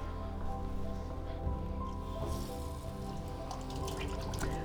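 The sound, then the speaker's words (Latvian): Hands are washed thoroughly under a running tap during surgical hand-washing practice, a steady stream of water with irregular splashes and wet rubbing sounds, no voices, continuing throughout. “Jo, protams, arī ķirurģijas laikā velk sterilos cimdus, bet neskatoties uz to, tām rokām ir jābūt ārkārtīgi tīri nomazgātām.”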